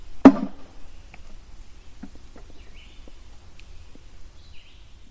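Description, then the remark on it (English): A single loud, sharp knock made by a person knocking rings out at the start, then only faint scattered ticks and a low rumble of background noise for the rest of the quiet stretch. “To be clear, the loud knocks are you knocking.”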